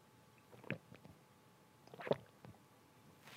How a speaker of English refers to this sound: Sorry, I've had some kidney stone issues lately and they say I need to be more hydrated as I'm trying to drink some more water, so just a second.